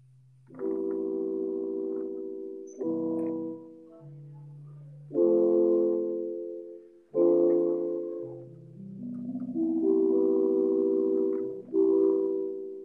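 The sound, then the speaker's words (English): A slow sequence of sustained chords played on an instrument, each held for a couple of seconds before shifting to the next, mellow and fairly low-pitched, with no talking over them. “Here, I can just like play some chords if you can hear them.”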